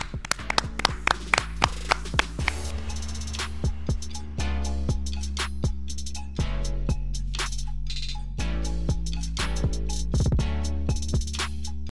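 Sharp, loud hand claps ring out in quick, uneven bursts, dozens of them across the stretch, over a steady sustained musical tone underneath. No one speaks.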